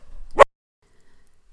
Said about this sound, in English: As I was saying, my dog just started barking, so I had to start again.